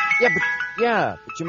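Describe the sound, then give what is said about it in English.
A Mr. Softy ice cream truck's tinkling jingle plays steadily as it passes in the early morning, its bright melodic tones running beneath a person speaking. “Hold on. The ice cream truck is going by.”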